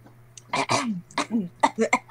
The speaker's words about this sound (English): Let me just clear my throat, you know.